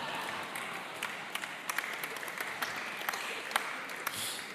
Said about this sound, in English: And after the shortest and fastest sermon I've ever done in my life. Just a clap.